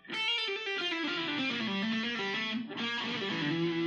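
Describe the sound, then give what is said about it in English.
A distorted electric guitar plays a sustained, dense riff with heavy reverb, loud, with a brief dip near the end before ringing on. No one speaks. “I gotta put the reverb on for that to make it sound better.”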